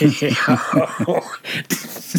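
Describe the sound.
A harsh, raspy cough breaks out partway through, a short noisy burst, with muffled talking before and after it.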